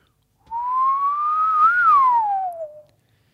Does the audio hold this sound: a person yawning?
no